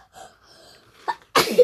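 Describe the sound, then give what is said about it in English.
A single loud sneeze bursts out after a soft inhaled buildup and a brief catch of breath, ending with a short voiced tail. “Bless you.”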